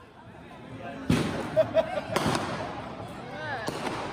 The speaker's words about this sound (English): This was the sound on Jackson Street back in late January of 2020. The sidewalk was covered in strips of red tissue paper. The air smelled sort of burnt because firecrackers and fireworks were going off constantly.